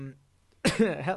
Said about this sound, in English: just coughed directly into the mic. No respect for our listeners. Absolutely not. Hopefully you're not listening with headphones on.